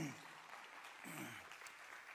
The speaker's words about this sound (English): Just, yeah, you can applaud. That's great.